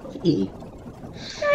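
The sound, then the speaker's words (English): A person imitates a herring gull call with their voice: a short low grunt, a pause, then a strained, high, squealing cry that rises abruptly at the end, fairly loud. “but before puberty, I actually did a really good herring gull impression, but I can't quite hit that note anymore.”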